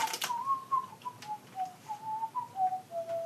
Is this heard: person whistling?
yes